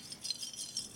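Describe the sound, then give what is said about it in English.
Ice cubes clink and rattle against a drinking glass in a quick string of light, bright, high-pitched taps, fairly soft and with no voices. “icy cold drink you guys are constantly swilling around in your glass?”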